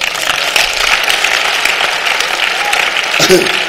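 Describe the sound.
A crowd claps steadily for a few seconds, a dense, even patter of many hands, with a brief voice rising faintly near the end.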